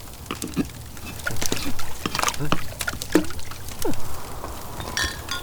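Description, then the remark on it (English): Rum being poured into a cup, with uneven glugs, small splashes and rising gurgles as the vessel fills over a few seconds. “Bona fide rum from one of the fishing lords.”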